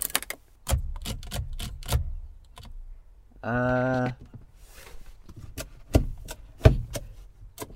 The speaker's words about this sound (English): That was what I'm doing now, that's the top of a coffee cup, like a plastic coffee lid. You can make a lot of funny sounds in this car.